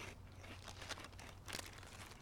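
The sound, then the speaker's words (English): Dry crunching and crinkling as crisp potatoes with the skin left on are chewed, with a few sharper crunches standing out over a low steady hum; no one speaks. “Right, these nice crisp potatoes, you can see that they've left the skin on this. Nice, yeah, that's how good, you do it. Good dimension to them. Good crisp, good crunch.”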